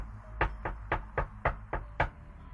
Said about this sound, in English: From the attic, you can hear, like, something knocking against wood.